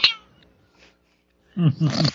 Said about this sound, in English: No, y'all hear a cat? Trying to... Oh, hush. There he is again. It's a she. Another stroke. It's an evil little 9.5-pound cat who's bossy boots and trying to walk on the keyboard.